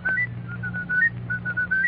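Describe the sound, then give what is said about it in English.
A whistler whistles a melody in a steady run of clear, sustained notes that shift in pitch, with a low hum underneath and no talking. “Can you whistle it?”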